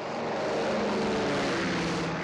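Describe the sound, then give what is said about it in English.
A propeller plane drones steadily overhead as it arrives and circles over a camp on the ice, a continuous low rumbling engine with a broad hiss above it, sustained and fairly loud throughout with no voices. “So here comes the plane. We could hear it sort of lumbering along, and you could see it, and it gets over the spot, and it circles around”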